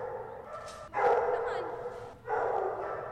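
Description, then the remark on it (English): Dogs from the Humane Society, brought in for students to pet and de-stress, bark in a couple of loud, harmonic bursts over a murmur of background noise, with a short lull between them, fairly prominent. “Yeah, I have a dog at home, so I love seeing these dogs here.”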